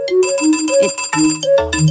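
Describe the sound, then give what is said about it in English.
A bright electronic melody from an old mobile phone ringtone called Sparkles, hopping quickly between sustained synthetic notes with buzzy harmonics, played steadily loud with no voices. “This is like the first ringtone that I really...”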